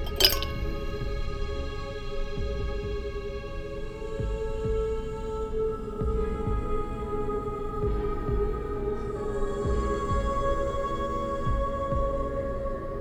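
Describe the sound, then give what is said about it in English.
A single bright clink of drinking glasses touching in a toast, followed by a long, clear ringing tone that hangs and slowly fades over a low, steady background hum. “But cheers.”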